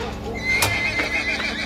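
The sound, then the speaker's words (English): The assassin John's horse lets out a wavering, high-pitched whinny while a few hooves clop sharply beneath it, fairly loud, as he charges out the theater's back door, with no voices. “Either way, John charges out the back door, taking his horse and theater hand Joseph Burroughs by complete surprise.”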